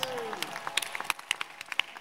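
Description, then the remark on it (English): An audience claps for the Lord during a sermon in a dense, irregular patter of many hands, with sharper individual claps popping out above the steady applause throughout. “The Lord bless those who are clapping for him.”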